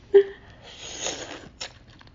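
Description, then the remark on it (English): An airy slurp of Szechuan beef noodles: a brief sharp suck, then a longer hissing draw lasting about a second, followed by one quick short slurp. No one speaks. “Are you going to slurp?”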